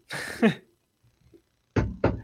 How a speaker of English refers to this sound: Did somebody just knock on your door? That's what it sounded like. Was that there? Was that here? I don't know. I was like, somebody's knocking.